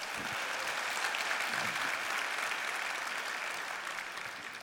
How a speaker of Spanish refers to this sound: Date un aplauso, más nada que eso.